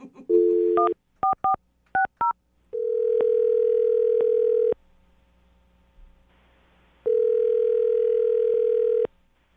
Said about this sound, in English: I'm going to dial the phone number right now, see if we can get her on the phone and get your second date, okay?